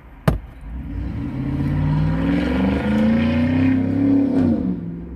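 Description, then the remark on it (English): A lifted truck's engine revs loudly as it drives past in a town, its deep growl climbing steadily in pitch, with a sharp knock right at the start. “Oh, this town has too many lifted trucks.”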